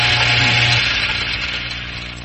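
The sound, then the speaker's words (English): A kitchen blender, blending a frog into a smoothie, whirs loudly and steadily, a dense high-pitched motor roar with a low hum underneath, running continuously throughout with no talking. “Again, I'm using the evolutionary idea of matter plus time plus energy, the energy in the form of a blender. And I turn the switch off, I add the energy, right? Sound?”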